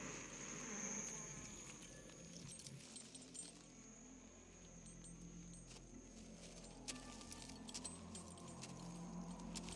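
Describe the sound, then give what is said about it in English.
Keys jangle and clink faintly in short metallic bursts, with a few sharper rattles near the end, over a low, steady background hum. “Give me the keys.”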